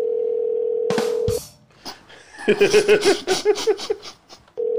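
A steady telephone ringing tone sounds for over a second, breaks off with a couple of clicks, then resumes near the end as the call goes unanswered. Giggling laughter fills the gap.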